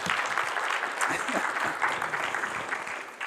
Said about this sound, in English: You know, if you haven't met my dad here, give him a big hand clap. Yeah, I appreciate him.